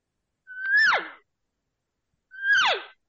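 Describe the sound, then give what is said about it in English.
Two separate elk cow calls blown on a diaphragm call, each a short nasal mew that holds a steady pitch, then breaks and slides sharply downward, with a pause between them and no talking. “That's a cow sound.”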